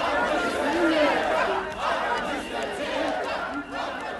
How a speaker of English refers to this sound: someone catches and uploads a crowd of protesters dancing around, singing one of … songs